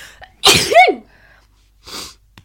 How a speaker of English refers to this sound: I'm going to sneeze.